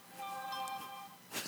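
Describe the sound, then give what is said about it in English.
A mobile phone that someone did not turn off rings with a short run of steady electronic melodic tones, faint, cut off by a brief rustling noise. “Someone didn't turn their phone off.”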